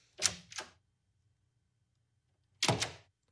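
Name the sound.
door sound effect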